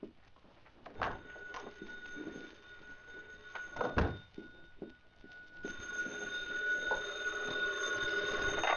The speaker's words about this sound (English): My phone's ringing. The other room. Go ahead. By all means, answer it. I'll wait.